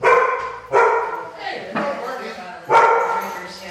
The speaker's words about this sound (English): It's the dog. I figured it wasn't you.